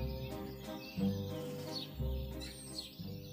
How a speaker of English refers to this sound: Suddenly, one morning, he heard the song of a bird.